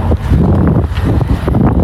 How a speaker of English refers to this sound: It's windy, as you can tell.